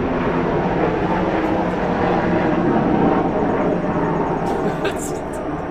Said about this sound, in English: Well, not necessarily a big plane, it's just flying low. And it's right above us. Oh, it's a helicopter! Oh, it's a helicopter! We got a helicopter! Oh, yeah, it's a helicopter. Looks military grade.